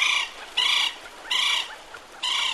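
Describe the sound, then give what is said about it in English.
A northern bobwhite quail calls, giving loud, ringing notes that repeat in a steady rhythm, about one every second, with no voices present. “Cuba is home to a unique population of northern bobwhites, with plumage patterns and short bills that set them apart from bobwhites on mainland North America.”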